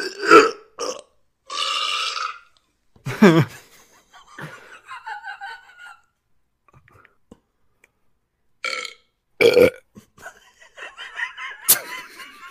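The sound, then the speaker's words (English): A string of loud, drawn-out burps from several people taking turns in a burping contest, each burst separated by short pauses, with snickering and laughter breaking out between them. “our burping contest is better than the burping contest on Bad Blood”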